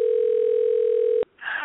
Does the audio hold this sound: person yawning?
no